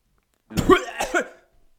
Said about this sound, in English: Did you just cough into the mic?